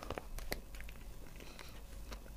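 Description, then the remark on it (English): Crunching as someone bites into a crisp honeycomb chocolate biscuit with little honeycomb pieces through it, with several sharp, brittle cracks followed by steady chewing, quiet and alone without talk. “Gives it a bit of a honeycomb crunch.”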